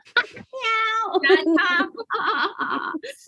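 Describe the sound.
A person imitates a cat, making a run of drawn-out, wavering meows up close, several in quick succession with short gaps, clear and fairly loud.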